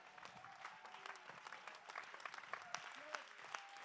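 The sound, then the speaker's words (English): A church audience applauds to give God praise in a steady, dense patter of clapping that holds at an even level, with a few raised voices calling out over the clapping. “Somebody back there, clap your hands and give God the praise.”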